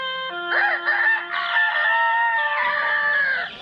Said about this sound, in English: So, the sun rises as the, some bird or another crows.